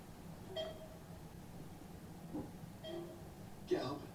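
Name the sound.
electronic beeping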